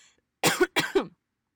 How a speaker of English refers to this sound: As I cough and as I defend myself. We did get tested for COVID. My shit came back negative, don't come for me. I know I just coughed, leave me alone, I'm just talking a lot and I haven't drinking any water, okay, bye.